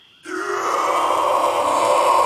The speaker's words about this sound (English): An unholy scream echoes through the forest.